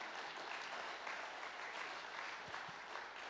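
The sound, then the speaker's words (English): A crowd applauds steadily after a joke at the close of a Christmas talk, a dense wash of many hands clapping at once that holds at an even level for a few seconds, with no voices standing out. “Are you applauding because you only get one bad dad joke?”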